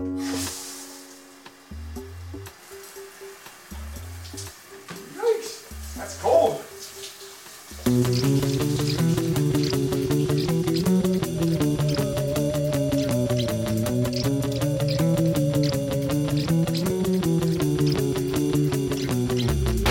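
A steady hiss of cold shower water runs for several seconds as a person takes a completely cold shower, with a few faint vocal sounds over it, before music abruptly takes over.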